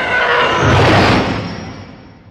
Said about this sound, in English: The TIE Fighters are one of my favorite sounds in Star Wars. I mean, talk about like an emotional, gripping spaceship sound. That spaceship is an enemy spaceship. That's not a friendly spaceship. It's roaring at me.